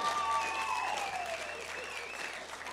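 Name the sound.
audience clapping and applauding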